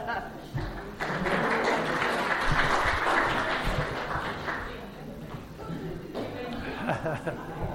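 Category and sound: crowd, group applause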